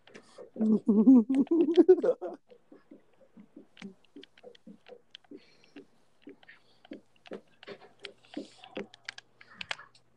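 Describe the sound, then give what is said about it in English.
A brief stretch of voice opens, then a steady run of quick, light clicks and taps follows, irregular like keys being struck on a computer keyboard, soft. “Is somebody shooing on something? Or typing?”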